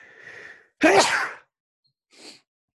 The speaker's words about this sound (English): Lord bless you.